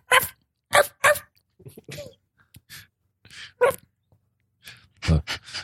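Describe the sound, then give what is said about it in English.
A small shih tzu barks in sharp, yappy bursts from down below, a quick cluster at first and then scattered yips with pauses between, ending in a louder double bark. No one speaks. “It's a little shih tzu down there.”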